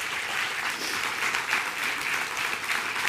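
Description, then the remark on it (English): A crowd gives the Lord a hand clap, applauding steadily for about three seconds, a dense, even wash of many hands clapping at once with no voices rising above it. “Someone give the Lord a hand clap because he's worthy.”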